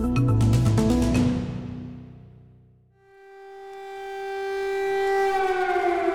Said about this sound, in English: We start in Ukraine. Air raid sirens sounding as Russian missiles strike the cities of Kyiv, Kharkiv, and Odessa.